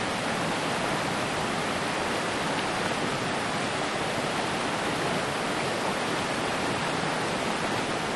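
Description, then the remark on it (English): Steady rushing water flows without a break in the wilderness, a dense, even hiss like a stream or small waterfall, with no voices or other sounds over it. “Of course, I'm based out here in the wilderness, which is water.”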